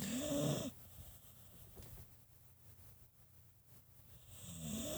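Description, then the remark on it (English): A female beagle, asleep behind the speaker, snores softly, two raspy breaths, one at the start and another at the end, separated by a quiet pause with faint room hiss and no talking. “That is our beagle snoring behind me, and I didn't have the heart to wake her up while I recorded this.”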